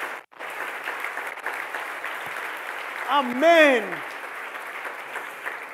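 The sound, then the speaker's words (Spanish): An audience applauds steadily during a morning sermon, a dense wash of clapping filling the room, while a man's voice calls out a short word over the applause partway through. “Denle un aplauso hoy en esta mañana.”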